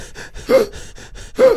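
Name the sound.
imitated labored gasping breaths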